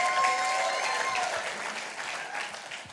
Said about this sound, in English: Come on, let's give the Lord a round of applause for that one.